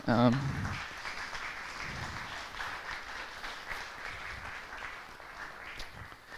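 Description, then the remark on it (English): An audience applauds in a steady, dense wash of clapping that holds at an even loudness for several seconds, after a brief voice at the very start; applause for everybody who shared testimonies at a Thanksgiving Sunday gathering. “And let's give a round of applause for everybody.”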